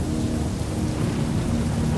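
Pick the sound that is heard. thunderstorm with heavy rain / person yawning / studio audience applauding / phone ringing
thunderstorm with heavy rain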